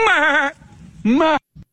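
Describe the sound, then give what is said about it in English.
Golfer Bubba Watson imitates a goat, giving two loud, wavering bleats with a short pause between, ending in a brief low grunt. “I really want to focus on the goat impersonation that he does.”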